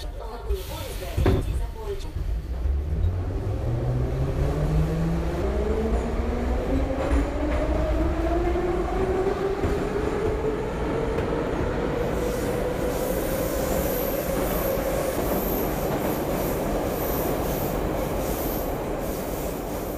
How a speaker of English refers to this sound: Okay, so let me just board this Moscow metro train